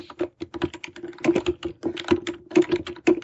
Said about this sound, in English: Really loud keyboard. Sounds mechanical. Sounds steampunk, like one of those steampunk. It's totally a nice, sleek Logitech keyboard. My mic is just really close.